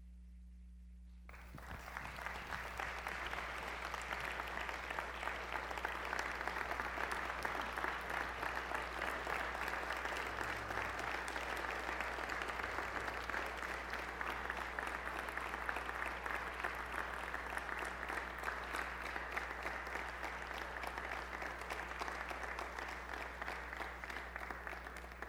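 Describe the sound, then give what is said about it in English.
Sustained applause from a large audience at a service, a dense, steady wash of many hands clapping that starts abruptly and continues evenly for about twenty-five seconds. “They're clapping because they love you and appreciate you.”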